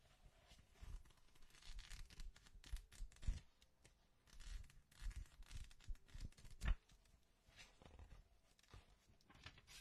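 Sheets of a patient's paper notes rustle and crinkle as they are shuffled and handled for checking, with irregular bursts of crisp scraping and flipping and a sharper crackle partway through. No one speaks.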